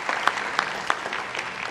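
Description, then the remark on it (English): An audience at a worship service claps together in a steady, dense patter of many hands, with a few sharper individual claps standing out above the wash. No one speaks over it. “Yes, let's give them a round of applause.”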